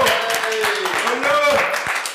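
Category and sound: crowd, people clapping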